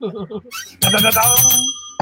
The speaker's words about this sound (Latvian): zvaniņš.